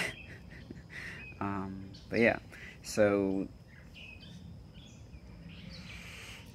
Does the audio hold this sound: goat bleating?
no